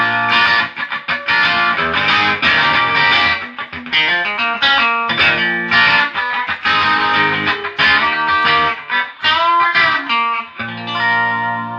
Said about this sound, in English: Give it a little single coil action. There's a single coil hollow body tones.